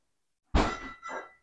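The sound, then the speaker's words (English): A man in the background slams a refrigerator door shut with a loud, heavy thump and clatter, followed a moment later by a second, softer rattle as it settles. No one speaks. “As he slams the refrigerator. Heavy-handed.”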